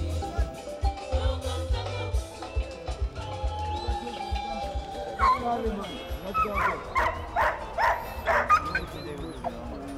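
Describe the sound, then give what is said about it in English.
Security dogs on a littered stadium field after a concert ended at sunrise bark and yip in a quick run of sharp barks, with some whimpering mixed in over a low rumbling background and indistinct voices. “When the concert ended at sunrise, cleanup crews and security dogs descended on the littered stadium field,”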